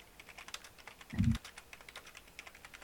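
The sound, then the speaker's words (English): Rapid, forceful clacking on a computer keyboard as someone types angrily, a dense run of sharp keystrokes with one heavier thump near the middle, with no talking. “You guys, I'm fucking typing very angrily.”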